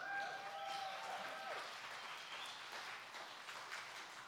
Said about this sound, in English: I love to see the ripple effect of us breaking out of Minnesotan-ness. It's great. Clapping in church and stuff.